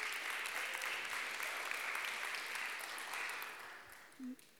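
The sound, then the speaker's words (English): A crowd claps steadily for fathers on Father's Day for several seconds, a dense, even patter of many hands that stays fairly subdued and never swells, with a brief vocal sound near the end. “The appreciation when it comes to the clapping wasn't as loud as Mother's Day.”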